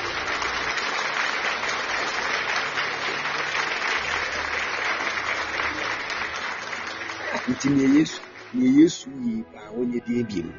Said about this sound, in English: Won't you clap for Jesus? Won't you clap for Jesus?